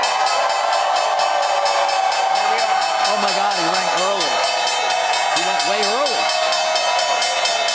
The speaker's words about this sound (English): There's the opening bell and the CNBC real-time exchange with the big board. Birkenstock celebrating their IPO.